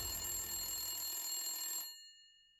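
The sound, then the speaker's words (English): A telephone bell rings with a bright, metallic jangle for nearly two seconds, then cuts off abruptly, leaving a faint ringing tone that fades into silence. No voices are heard. “But then they got a hint. A phone call.”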